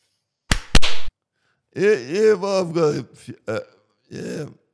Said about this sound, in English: Have you got a slap of the week?